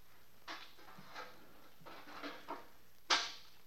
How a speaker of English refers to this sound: Everything quiet. What happened to the elevator? Then I heard the door open.